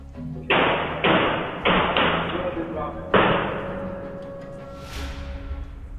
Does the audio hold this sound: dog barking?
no